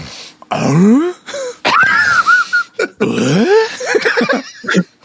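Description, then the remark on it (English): A person imitates snoring, making a loud string of rising, groaning inhale-exhale sounds with wheezy, gargly textures, repeated several times without any actual talking. “That's how he trying snored.”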